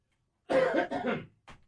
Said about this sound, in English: Excuse me, I must cough.